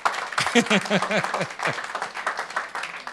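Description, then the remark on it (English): A church audience breaks into steady, dense applause for members who gave money and cooked food for the church, filling the whole clip, with a voice briefly calling out over the clapping near the start. “Clap for them for that.”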